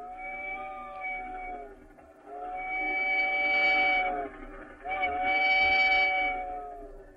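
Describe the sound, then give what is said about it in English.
A lonesome train whistle of the Pine Valley Limited, an owl train, sounds three long, sustained blasts in a row, each a steady chord-like wail that swells and fades, with a faint rumble underneath and no voices. “That sounds like we must have caught the owl train.”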